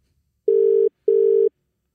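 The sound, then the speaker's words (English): A telephone rings for an incoming call from a county jail: two steady electronic ring bursts, each under half a second with a short gap between, clear with no one speaking. “You are receiving a phone call from the county jail.”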